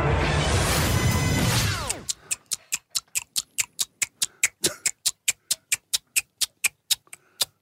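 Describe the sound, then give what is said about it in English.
A burst of loud, rushing noise gives way to a person in a studio clicking their mouth in a steady, even rhythm, imitating a ticking clock with about twenty crisp ticks and no talking. “We don't have a real clock sound effect, so that's just me.”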